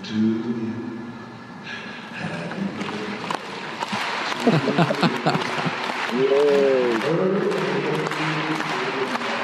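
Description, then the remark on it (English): Steady, dense applause from a crowd in an arena where Kim Jong-un sits in the highest seat, running through the whole clip at an even level, with voices speaking over it partway through. “Like, clap or you will be sent for firing squad.”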